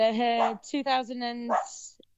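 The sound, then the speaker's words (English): Dogs barking in two long, drawn-out, whining bursts close together, fairly loud, followed by a short quiet tail with a faint click. “Oh, sorry, that's my dogs.”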